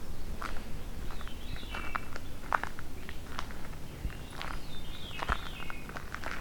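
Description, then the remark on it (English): A Veery sings a few breezy, downward-spiraling fluty phrases, each cascading lower in pitch, over a steady background of crunching and rustling like footsteps on leaf litter, on the Lafarge Trail north of Hamilton, in the Beverly Swamp complex. “Well, it sounds like I'll find Veery though.”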